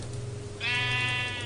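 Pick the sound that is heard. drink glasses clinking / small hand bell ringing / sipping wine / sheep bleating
sheep bleating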